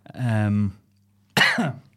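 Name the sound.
cough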